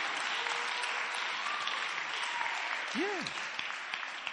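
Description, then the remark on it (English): An audience claps steadily and loudly for the full four seconds, a dense wash of hands. Near the end a single short whoop rises and falls above the clapping. “Clap for me.”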